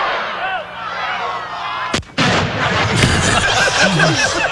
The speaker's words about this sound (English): And it's a huge explosion.